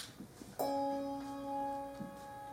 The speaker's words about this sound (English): If you have a whole note that you want to sound like an organ chord, you give them less of it at the beginning, and as it decays, more. So I actually, with a bell this big, I can make a crescendo.